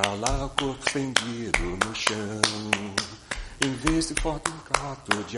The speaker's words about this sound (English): I'm Brazilian myself, and there's another element to layer in here. When the way we would naturally clap and sing would be like this.